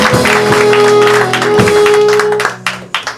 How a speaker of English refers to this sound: Welcome back to town. Thank you. Give her a big round of applause, everybody. Your regular is back.